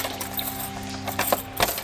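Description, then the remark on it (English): Keys jangle in a few quick, bright metallic clinks as someone looks for the keys to a door, set over a steady low electrical hum, with no one speaking. “Where's those keys?”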